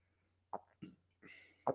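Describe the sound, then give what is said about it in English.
Someone gulps down a drink in four separate swallows, each a short wet plop spaced about a third of a second apart, with a soft breathy rush before the last gulp. No one speaks. “Yeah, I hope you can hear my gulping sounds.”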